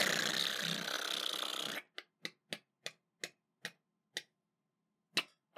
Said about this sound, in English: Okay, let's give it one more spin of the wheel.